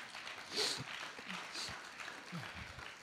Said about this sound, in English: Come on, clap. Go ahead and clap. Everybody, clap.